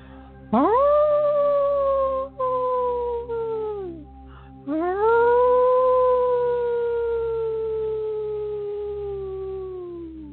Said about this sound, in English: Gentle deep inhales. Exhale, howl again.